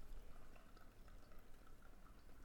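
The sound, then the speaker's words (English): Coffee pours steadily into a cup as someone pours themselves another coffee, a soft continuous gurgling trickle that stays even for a couple of seconds. Quiet, with no voices. “I'm just pouring myself another coffee.”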